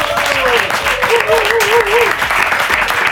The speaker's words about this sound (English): So once again, a big applause, not only for me, but also just for the team. Let me hear it. Come on.